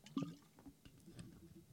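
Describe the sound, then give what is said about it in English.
A quiet sip of water, with a few soft wet slurping and swallowing sounds spread over a couple of seconds and no talking. “I need to take a drink of water.”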